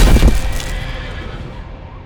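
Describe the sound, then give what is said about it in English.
A single loud, shattering crash as jousting lances smash together, a sharp burst of splintering impact that quickly fades into a lingering, rumbling decay. “And then, with a shattering crash, we came together midair.”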